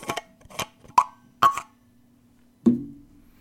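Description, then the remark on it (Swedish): A cap is twisted off a coffee thermos in a few short, gritty clicks, then a louder hollow pop rings out briefly, with no voices. “Ja, vi skruvar upp korken på denna 700 år gamla mobiltermos vi har här.”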